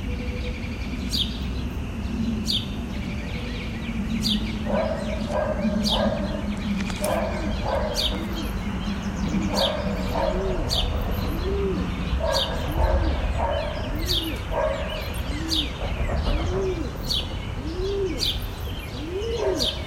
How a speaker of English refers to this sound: Good morning, West Philly Birds. It's nice to hear you all.